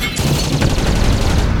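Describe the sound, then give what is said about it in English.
Spaceship engines blow apart in a loud, continuous roaring explosion, with dense crackling bursts and deep rumble filling the whole moment, no voices heard. “Oh, God, there go my engines.”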